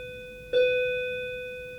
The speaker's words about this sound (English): But it is that weird. That is not how, the bell I remember. It's a digital bell. It's not like an actual physical bell out in the hallway that's a little bit more like jump and very intimidating sounding. It's now second period.